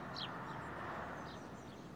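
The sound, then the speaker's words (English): A few brief house sparrow chirps, fairly faint and spaced irregularly, rising over a steady wash of outdoor background noise with no one talking. “The house sparrow is widely distributed and is especially associated with permanent human habitation.”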